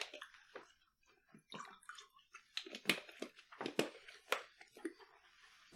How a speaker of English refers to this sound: I'm gonna drink some water now.